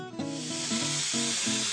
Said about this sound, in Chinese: 蒸汽能改变帽子的形状，能让它变形或者让它再下垂一点。